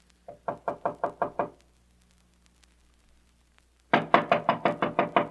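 A series of seven quick knocks on a wooden dressing room door, a pause of silence, then a second, louder and more insistent round of about eight rapid knocks, with no talking.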